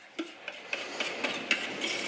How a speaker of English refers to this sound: Get all that icing out of the pan. We're gonna spread it around really fast.